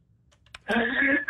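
A man clears his throat: a few faint clicks, then a loud, voiced, rasping rumble that holds steady for about half a second, breaks briefly, and starts again.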